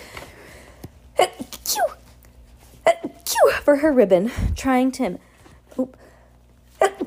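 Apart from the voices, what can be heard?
sneezing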